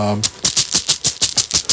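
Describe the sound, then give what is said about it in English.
Dice rattle and clack inside a bag in a quick series of about nine sharp bursts, preceded by a brief fragment of a voice. “The last word we're going to do for extra material is from my bag of dice that we've mentioned before.”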